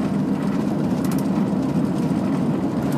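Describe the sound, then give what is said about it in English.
A big black car overtakes amid a steady, loud rumble of road and engine noise that stays even throughout, with no one speaking. “Now I'm gonna go overtaken by a big black car.”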